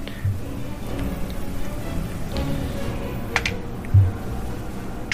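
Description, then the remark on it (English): A steady rattle of many small dice clattering and tumbling across a hard tabletop, with one sharper knock near the end and no talking. “Okay, lots of dice.”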